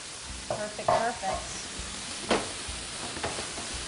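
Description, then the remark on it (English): Shrimp sizzle steadily in a hot, smoking frying pan, a constant crackling hiss with a few sharper clattering bursts as they are tossed and stirred. “We got some smoke coming off that pan, so let's go ahead and throw those in there.”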